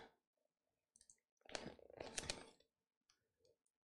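Crinkly plastic rustling and sharp clicks as someone wrestles with a stiff childproof package, with a dense burst of crackling handling noise in the middle and a few scattered clicks before and after.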